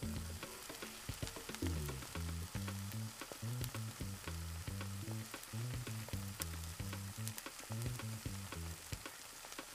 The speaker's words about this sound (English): Okay, the wok is nice and hot. Let me pour the oil and toss these onions in.